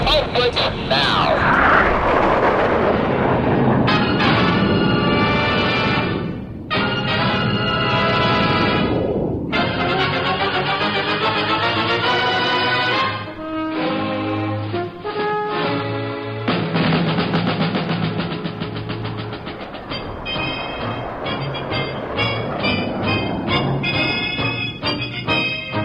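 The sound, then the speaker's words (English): A loud, steady jet roar runs throughout, with a whining tone rising and shifting as the engines run up for takeoff at an airfield, briefly dipping and surging again, dominant, with faint voices underneath. “Let's run them up.”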